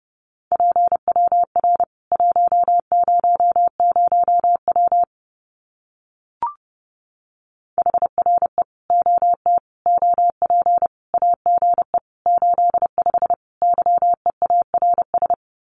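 Rapid Morse code at around 30 words per minute sending common QSO phrases, a single steady mid-pitched tone keyed in quick dots and dashes, broken by a pause of a couple of seconds with one brief click.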